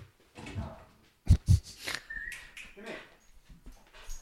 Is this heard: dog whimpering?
yes